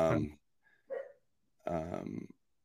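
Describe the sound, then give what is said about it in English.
Two dogs, Norman and Claire, bark in a few loud bursts: a sharp bark, a brief softer yelp, then a longer drawn-out bark after a short pause. “And so they now that they're like, Norman wouldn't bark like that normally by himself, but they get each other going, you know?”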